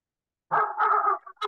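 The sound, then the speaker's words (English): A short dog-bark text message alert tone: one drawn-out, slightly yelping bark followed by a quick small yip, clear, with no talking over it. “And did everybody hear my dogs barking? That's my text message.”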